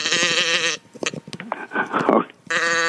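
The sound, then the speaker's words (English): A loud, drawn-out cow moo, used as a rim shot, sounds at the start, brief talk follows, then a second moo cuts in at the end, both prominent. “That's a cow's rim shot there.”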